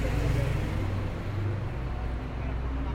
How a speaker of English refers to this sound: The traffic is distracting me, holy fuck.